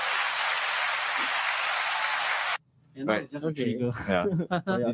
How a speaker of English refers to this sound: Let's give him a clap. Let's give him a clap.